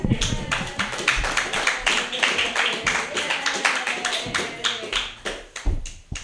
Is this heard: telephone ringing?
no